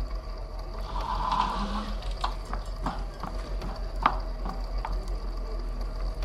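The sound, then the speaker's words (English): A drink being stirred and finished, a spoon lightly clinking against the glass in a series of irregular taps, over a steady low background hum. “O'Calico, while I finish up your drink, head over to the left there and get yourself cleaned up in the bathroom.”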